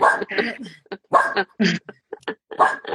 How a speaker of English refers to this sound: And I think your dog is agreeing with what I'm saying there.